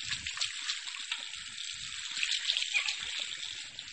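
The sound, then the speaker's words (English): Tap water runs steadily in a sink while someone washes their hands, a continuous hissing splash with faint sloshing as hands move under the stream, fairly quiet, with no talking. “Wash my hands.”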